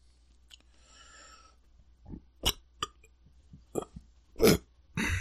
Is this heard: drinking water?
no